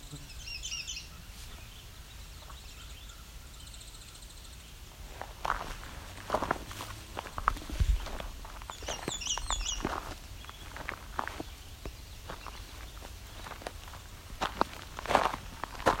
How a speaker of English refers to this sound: The only thing American Red Starts are very consistent at is that they warble and it doesn't go on for very long.